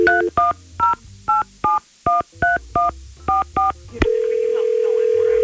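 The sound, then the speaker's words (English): Y100 radio hosts phone a woman on air: a quick run of about eleven touch-tone dialing beeps in a steady rhythm, then a click and a continuous, loud telephone line tone, with no talking. “All right, well, why don't we get Brooke on the phone and try to get some answers and maybe, just maybe, get a second date.”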